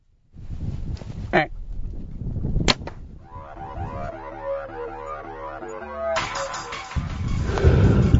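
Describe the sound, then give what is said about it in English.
A sharp bow release snaps, followed moments later by a crisp smack of the arrow striking a large buck deer scoring 196 Pope and Young, then a man's excited, strained voice rises over rustling wind noise. “We just shot the biggest deer in my life, maybe the biggest deer I'll ever kill in my life.”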